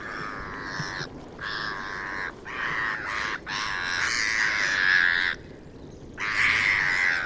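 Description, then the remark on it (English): Harsh, rasping black-headed gull calls come in a series of about six drawn-out cries separated by brief pauses, loud, with no voices present. “And for your listening pleasure, here's what they sound like. The black-headed gull.”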